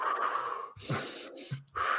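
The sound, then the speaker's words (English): Slow, deep breaths drawn in and pushed out as a calming breathing exercise, a few long airy inhales and exhales separated by brief pauses, with no talking. “Just do your breathing exercises.”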